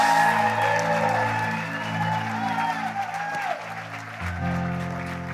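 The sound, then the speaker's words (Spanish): An audience applauds steadily and loudly, with scattered cheers, while sustained musical tones hum underneath; the applause keeps going for the full length as the music shifts near the end. The audience is welcoming a singer at a weekend celebration. “Vamos a recibir con un fuerte aplauso a ….”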